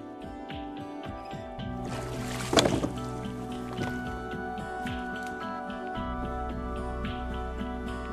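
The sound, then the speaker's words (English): Water ambience at the Grand Canal Dock Basin, with gentle lapping and one brief, louder splash near the start, over a steady low mechanical hum throughout. “We're here at the Grand Canal Dock Basin and we're waiting on the big truck to bring in our big beautiful boats, and it's you know, a bit exciting.”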